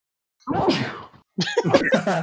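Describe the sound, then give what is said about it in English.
A loud two-part sneeze: a drawn-out voiced intake, a short pause, then a sharp, breathy burst that trails off. No other sounds around it. “No longer is the tumbleweed, it's the sneeze.”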